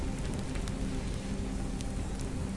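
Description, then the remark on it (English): A steady, dense crackle of a huge fire burning on the ground, with scattered sharp pops over a low rumbling roar, continuous throughout, with no voices. “You hear the crackling of the flames.”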